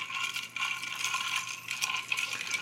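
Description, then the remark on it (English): Ice rattles and clinks steadily against a glass as a cocktail is stirred, a busy, bright jingling that keeps going with small bursts of sharper taps and no talking. “I'm going to stir mine. Yeah, stir it up.”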